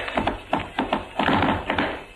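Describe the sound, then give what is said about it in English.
A quick run of tap dance steps: crisp, clattering taps in a lively, uneven rhythm, fairly loud, with no voices over them. “I'm gonna do a step that nobody else in the business can do except me.”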